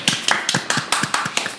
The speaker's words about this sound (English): So give it a round of applause, Yay. Everybody. Yay.